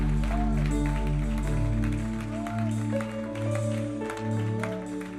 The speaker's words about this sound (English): Yeah, where you are, why not applaud the King?